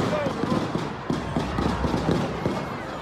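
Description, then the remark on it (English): A rapid, irregular volley of gunshots from a shooting at the end of a celebration parade near Union Station in Kansas City, a dozen or more sharp popping cracks crowding together over a steady noisy background of voices, much like a string of fireworks going off. “That is, if that's two shooters, right? That's that is a lot of gunfire.”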